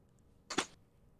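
A single sharp slap rings out, a quick crisp smack, over an otherwise quiet background with no talking.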